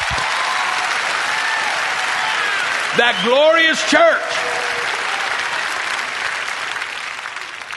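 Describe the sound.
An audience gives the Lord a clap offering, clapping steadily and densely throughout in a broad wash of applause, while a voice briefly calls out over it near the middle with rising, sung-like tones.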